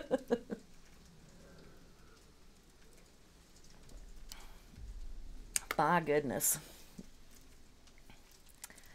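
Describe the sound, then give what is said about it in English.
A hailstorm in Seattle: a steady patter of hail drums on a surface throughout, with a brief startled exclamation from a voice partway through and a low rumble underneath. “Is it hailing where you are currently?”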